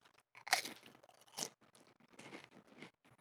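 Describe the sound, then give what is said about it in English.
Loud, dry crunching of a donut-flavored chip being bitten and chewed, a burst of several crisp crackles followed by irregular, softer munching with no talking. “It's a donut, but it's also a chip.”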